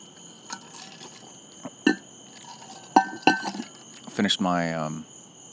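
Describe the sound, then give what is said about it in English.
Ice cubes in wine and water clink and rattle against the inside of a vacuum-sealed insulated cup in several sharp taps, ending with a brief swirling rattle, over a faint steady hum. “Finished my bike and poured myself a glass of wine and water over ice in one of these vacuum sealed cups everybody's got right now.”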